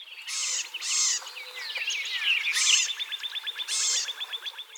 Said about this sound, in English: They also give a scolding call. I think sounds a lot like the scold call of chickadees and tufted titmice.